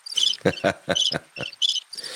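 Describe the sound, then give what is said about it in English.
A cricket chirping sound effect played in a studio: a quick series of bright, pulsing chirps repeating in a steady rhythm, fairly loud, with no talking over it. “I'm hearing crickets. I get to play the cricket noise.”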